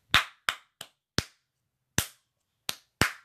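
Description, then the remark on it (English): Seven sharp, crisp hand claps at an uneven pace, four quick ones, a pause, then three more, each loud and cleanly separated by silence, with no talking. “Okay, 8 claps.”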